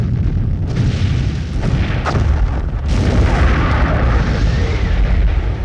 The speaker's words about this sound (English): As you watch, the smallest fragment breaks off of this massive comet and rockets into Turtle Bay, destroying it in an explosion of fire and ash.